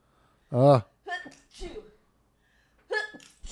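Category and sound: human body sound, a person sneezing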